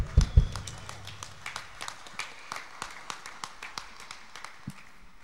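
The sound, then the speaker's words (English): Sparse, uneven clapping from a church audience giving a round of applause for the day's guests, individual claps standing out rather than a full roar, opening with a couple of heavy low thumps and fading out near the end. “And if we could get a loud round of applause for our guests today.”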